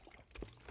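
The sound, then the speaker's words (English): A short, faint splash and trickle of water being poured or spilled, lasting under a second with no voices. “Not the sparkling water. That's really flat, actually.”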